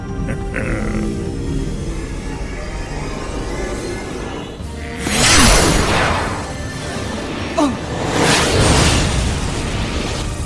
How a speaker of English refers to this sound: An explosion.